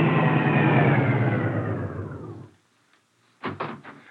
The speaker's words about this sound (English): Car coming.